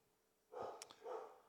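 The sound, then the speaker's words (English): Two short, muffled dog barks with a brief pause between them, faint in the background with no one talking. “I'm so good at it, you can hear dogs in the background barking.”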